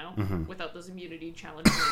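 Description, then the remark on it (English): A single sharp cough bursts out near the end, right after a stretch of casual talk and murmured agreement. “It was a cough.”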